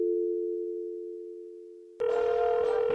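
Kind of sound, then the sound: signal or alarm, telephone call ringing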